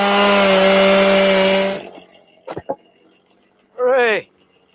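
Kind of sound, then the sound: tool, chainsaw cutting wood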